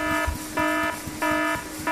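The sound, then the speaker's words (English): A harsh electronic alarm buzzes in steady, evenly spaced pulses, each lasting about a third of a second with short gaps between, loud with nothing else going on. “For God's sake, turn that Verschlagener alarm off, somebody.”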